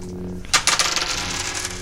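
Percentile dice, rolled for a critical hit, clatter onto a hard tabletop, a sharp first impact followed by several quick rattling bounces that settle within about a second, fairly loud with a steady low hum beneath.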